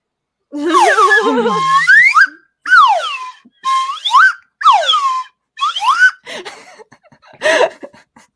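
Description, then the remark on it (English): A slide whistle plays a run of swooping pitch glides, mostly rising sweeps in about five short phrases, loud, followed by a few breathy, airy bursts. “So instead, you're going to get a slide whistle.”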